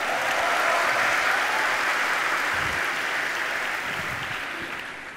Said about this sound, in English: Let's clap it up